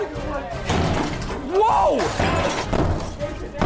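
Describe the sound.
Repeated heavy blows hammer against a thick polycarbonate glass barrier with the Krusty Krab on its other side, ending in a cracking, shattering burst; loud, with a voice crying out over the impacts.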